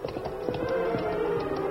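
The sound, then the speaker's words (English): Horses' hooves clatter in a quick, steady clip-clop rhythm over a low continuous rumble, moderately loud with no voices, as the masked man and Tonto ride their horses Silver and Scout up out of a creek bed. “As the masked man and Indian rode up out of the creek bed”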